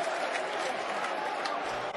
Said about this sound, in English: Oh, Ball makes a class save. That was a header on goal. Coming downwards towards the bottom left-hand side of the goal. Ball makes a quality save and is getting a standing ovation clap.